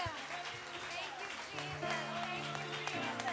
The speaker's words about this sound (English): Let's give the Lord a hand clap of praise